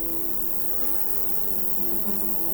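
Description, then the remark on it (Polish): A steady, continuous drone of buzzing insects fills the air, low and humming without pause, like bees and flies, in tall grass on the Jaworzynka glade, a Tatra mountain meadow, around 9 a.m. on a hot day nearing 30 degrees Celsius. “Wszędzie wokół słychać brzęczenie owadów.”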